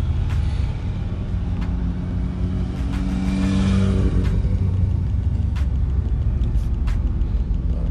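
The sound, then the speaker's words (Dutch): Motorcycle engines drone and rev as riders pass on a road in the Netherlands, the pitch rising and falling over a steady rumble of traffic, with a louder surge near the middle. “Motorrijdend Nederland is ook los, dus ik ga een beetje rechts.”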